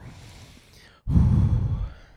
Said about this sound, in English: Sorry for blowing on the mic.